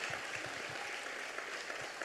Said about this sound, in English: And come on, can we give a round of applause? Can we just honor them today?